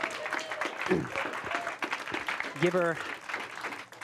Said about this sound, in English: give her some claps. That's good.